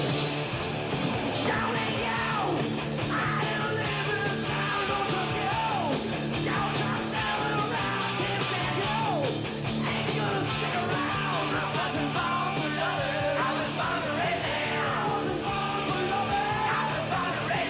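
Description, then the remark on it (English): A loud, dense 1980s hard rock song played by a band continues throughout, with a strained, screaming lead vocal wailing over heavy guitars and pounding drums, at full volume throughout. “It's just a screaming 80s hard rock shit.”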